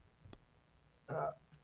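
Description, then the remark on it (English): A faint, sharp click is followed about a second later by a louder, abrupt gulping hiccup, with no talking around it. “My hiccups are going to kill me right now.”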